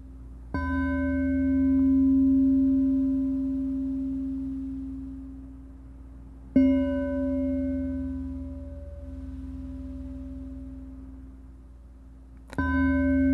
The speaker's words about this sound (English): Keeping your attention on the feeling of the breath moving in and out of your nose while you breathe in for one chime and out with the next chime.